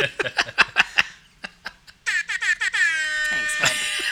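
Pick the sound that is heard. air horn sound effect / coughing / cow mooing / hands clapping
air horn sound effect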